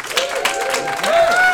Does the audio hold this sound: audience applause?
yes